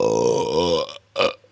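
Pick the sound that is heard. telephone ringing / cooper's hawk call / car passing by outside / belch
belch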